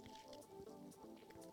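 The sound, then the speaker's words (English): Wet sipping and slurping of lemon water, with a few short liquid gulps and squishy mouth sounds over a steady low hum, no talking. “Let's get a big sip of the lemon water, considering that I'm under the weather a little bit here.”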